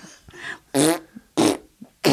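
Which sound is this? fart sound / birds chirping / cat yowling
fart sound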